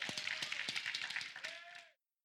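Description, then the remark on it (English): An audience gives a hand clap of praise to the Lord in a dense burst of applause for about two seconds, loud and steady, with a few voices calling out underneath before it cuts off abruptly. “Come on, let's get a Lord a hand clap of praise.”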